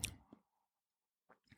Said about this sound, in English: So D. Do one more sip here and get the true flavor. Yeah, that's the one. That D. Whew, still got the hug going.